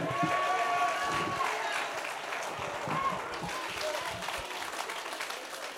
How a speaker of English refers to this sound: Wherever you're sitting, clap your hands unto the Lord and shout unto God praises to the Lord. He's a good God.